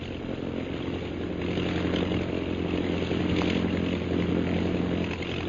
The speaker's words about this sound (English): He's throwing a circle of planes around the camp. The scout planes are coming straight here, all right.